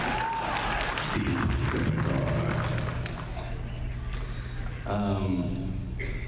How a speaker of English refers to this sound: Yeah, it's a steampunk Gryffindor. Awesome. You're getting applause for that.